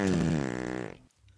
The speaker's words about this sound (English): He was nasty indeed, and that wasn't the worst of it, because this little goblin also liked to make rather loud, smelly bottom burps.